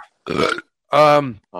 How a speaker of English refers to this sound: I was like, why don't you drink something? And then you burped. I'm like, yeah, you are drinking something.